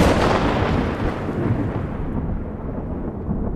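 Deep, rolling thunder from artificial lightning bolts up to 135 feet long, produced by a 20-story electrical tower in Colorado and audible 15 miles away, rumbles continuously and loudly, a heavy low roar that fills the whole stretch without pause, its upper crackle fading slightly toward the end.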